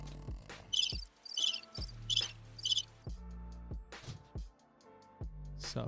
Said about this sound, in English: Crickets on that.